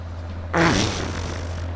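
A single short, brassy fart with a wobbling, slightly falling pitch, lasting about a quarter second over a steady low background hum.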